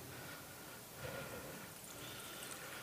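Water pours steadily for a few seconds, a soft continuous splashing trickle with a slight swell near the middle, fairly quiet, with no one speaking.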